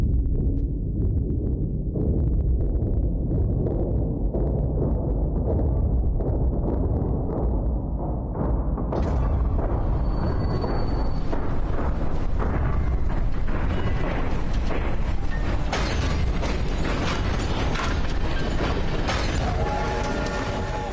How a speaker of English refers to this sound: And then, you know, it culminates in the whole train derailing spectacularly and improbably. And one of the better CGI fires in this movie, I will say.